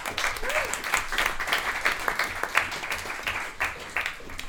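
A crowd applauds steadily to welcome guest speakers at a talk on a cold, miserable Tuesday night, many hands clapping in a dense, continuous patter for several seconds, with a faint whistle or call rising briefly near the start.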